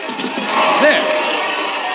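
A crowd in uproar in the street as a man fires a pistol into it, a dense, steady roar of many voices with individual shouts and cries rising above it, loud and continuous throughout.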